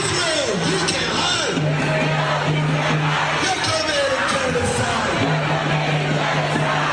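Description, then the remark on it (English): A large crowd of pro-Palestinian protesters making their way to Wall Street chants angrily against Israel, many voices shouting together in loud, sustained, rhythmic calls over a constant roar of crowd noise for the whole stretch. “New video overnight showing pro-Palestinian activists making their way to Wall Street with angry chants against Israel.”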